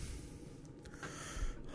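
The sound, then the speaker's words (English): Heavy breathing right up against the microphone, a steady airy rush with rough, snorting puffs and no talking, growing a bit louder near the end. “If we could tone down the breathing about 100%.”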